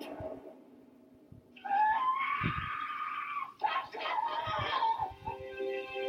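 A grieving mother wails in anguish as she collapses and is held up, her high, strained cries rising and breaking over several seconds, loud, with sobbing gasps and a second burst of crying near the end.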